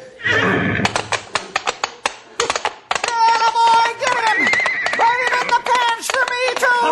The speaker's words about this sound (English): Look out for that horse, boss! He's coming for you! Get him back! Get him back! He'll kill me!